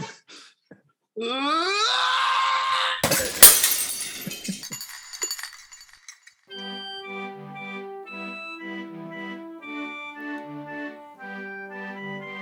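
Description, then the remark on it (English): A strained, rising groan leads into a loud crash of breaking glass as someone throws themselves into it, with shards tinkling and scattering for a couple of seconds before a melodic musical passage begins. “I'm going to throw myself into the glass.”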